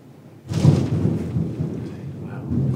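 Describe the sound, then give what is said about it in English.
A sudden clap of thunder breaks in after a quiet moment, then rolls on as a loud, deep rumble over steady rain for the rest of the storm. “It's quite a thunder strike at the end of that story.”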